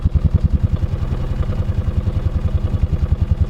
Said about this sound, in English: Oh, that sounds good. It's awesome. It's so smooth. It sounds like, I mean, even that chirpy starter sound is still there. Here's the exhaust.